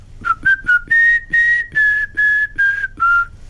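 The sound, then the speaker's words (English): A person whistles the opening notes of a TV theme tune, a short, bright run of about eight distinct notes, some clipped and some held, rising then falling in pitch, clear with no talking. “I used to whistle the very first part of the Some Mothers Do Have Them theme”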